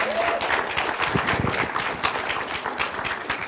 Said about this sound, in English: Come on, let's give her a round of applause as she comes.